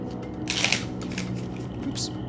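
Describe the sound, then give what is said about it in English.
A deck of playing cards, used as an oracle, is shuffled: a quick rattling riffle followed by a second, shorter burst of flicking cards over a low background murmur. “Okay. Let's give that one more shuffle.”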